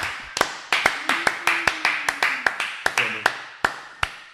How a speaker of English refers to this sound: Hold on, I think we need this round of applause for what you've gotten to.